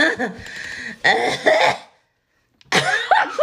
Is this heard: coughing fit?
yes